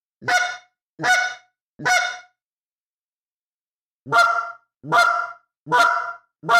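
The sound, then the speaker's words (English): Short, sharp goose clucks blown on a goose call by popping the tongue, loud: three quick notes, a brief pause, then four more in an even rhythm, with no talking. “You're just popping your tongue and just doing the cluck.”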